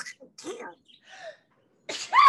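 A single loud sneeze bursts out at the very end, preceded by a few quiet, breathy vocal sounds as the build-up catches.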